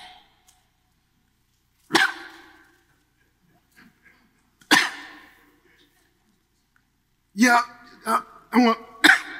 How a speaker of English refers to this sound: See here, when you translate this original word, it means to cough, to continually cough. It's a continuous hacking.